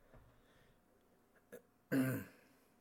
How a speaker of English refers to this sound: You'll probably hear the evidence of the pollen in the air with lots of snorting and coughing and sniffling. I apologize, but cannot be helped.